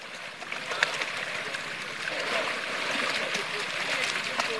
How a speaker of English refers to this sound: A writhing mass of catfish splash about in a small pond as Sean Ogunlana tosses fish food into the water